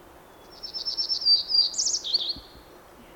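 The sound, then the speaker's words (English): A hermit warbler sings a high, buzzy song of rapid repeated notes that rise to a brighter trill, heard clearly over a quiet background with no voices, recorded in 2017 in the H.J. Andrews Experimental Forest. “This is a bird that is called hermit warbler.”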